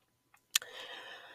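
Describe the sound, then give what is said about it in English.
Beads in a person's hair clicking together: a faint tap, then a sharper, brighter click, followed by a soft rustling hiss. Quiet, with no one talking. “I have beads in my hair right now, and I already just know that it's gonna pick up that noise in the background.”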